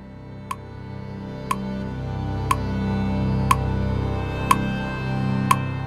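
A clock ticks steadily, six sharp clicks about one second apart, heard clearly over a low, droning background hum with no voices.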